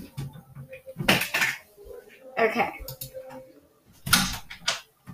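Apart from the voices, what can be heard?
door being closed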